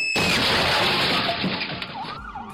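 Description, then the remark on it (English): A car crash sound effect of a rear-end collision in a spot about turn signals: a loud, dense burst of crunching, clattering noise sustained for about two seconds, then cutting off into a brief wavering, siren-like tone. No one speaks. “I slammed into the back of him because I thought he was going right.”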